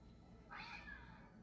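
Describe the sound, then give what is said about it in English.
A single drawn-out cat meow rises and fades over about half a second, fairly soft, with no talking and only a faint low hum in the background. “That's just how cats are.”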